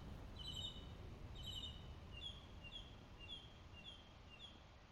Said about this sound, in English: I'm going to play the mockingbird song right now for you guys to hear.